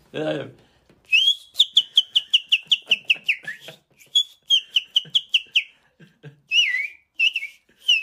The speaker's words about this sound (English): Give us another whistle there again. What? Give us another whistle.